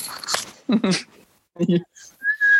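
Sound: person whistling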